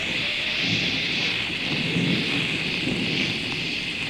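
Shower water runs in a steady, unbroken hiss for several seconds, a loud rushing spray with a low rumble underneath and no voices.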